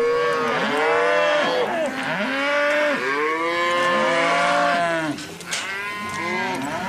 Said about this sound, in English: Cows have sounds that they make and the smell that they smell like